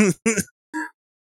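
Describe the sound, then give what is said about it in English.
A person clears their throat: two quick, voiced rasping bursts, then a shorter third one, followed by silence. “let me clear my throat.”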